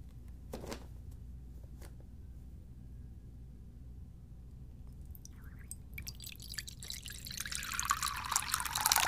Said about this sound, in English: Some water over that to steep.